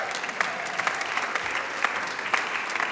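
An audience claps steadily, a dense patter of many hands filling the room, loud and sustained for the whole stretch with a few sharper claps standing out.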